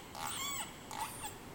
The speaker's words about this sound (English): The sound of the resident killer whale pod passing through the Georgia Strait.